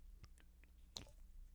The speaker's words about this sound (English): Hold on. I got to take a sip.